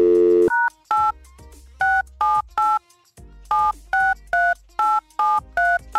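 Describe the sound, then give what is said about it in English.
A brief steady dial tone gives way to a quick series of touch-tone dialing beeps, about eleven in two rapid runs separated by a short pause, loud and clear with no talking, as Houston radio station Mix 96.5 phones a listener. “you need to answer your phone because we're calling you right now.”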